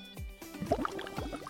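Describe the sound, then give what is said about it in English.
A pina colada being slurped, likely through a straw: wet, bubbly gurgles and sucking pops in a short, uneven burst, moderately loud, with no one talking. “I basically drank a little bit of my pina colada and I realized that it was like...”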